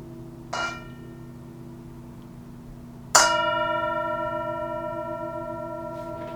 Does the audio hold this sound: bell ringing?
yes